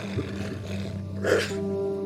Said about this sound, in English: Mixon barked. It wasn't a howl or a bay. It was the sound of a breath caught in your throat. A coughing noise that Gerald didn't like, but took as affirmation anyway.